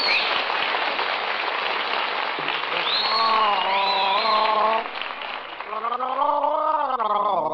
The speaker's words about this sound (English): Well, I'm drinking water. Doctor told me to drink water an hour before I eat, and I don't like it.